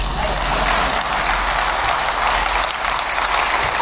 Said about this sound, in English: Thanks, you guys. Thank you so much. You can clap.